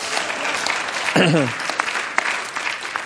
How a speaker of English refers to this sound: Yeah, let's just clap. Woo!